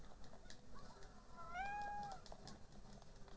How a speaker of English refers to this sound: Yes, little cat.